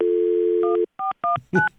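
A steady telephone dial tone hums for under a second, then cuts to four quick touch-tone keypad beeps in a brisk rhythm, clear, with no voices.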